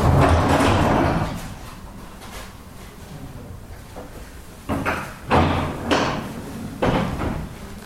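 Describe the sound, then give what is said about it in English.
A heavy sliding metal door into a back room holding half a dozen locomotives rumbles and scrapes as it slides open, followed by several loud clanks and thuds as it rolls along its track. “showed us a sliding metal door into a back room which had half a dozen locomotives in it.”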